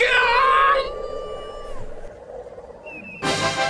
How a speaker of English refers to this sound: As I swatted away keg flies and flicked vamp slugs off the edges of the foxhole, a scream broke the air.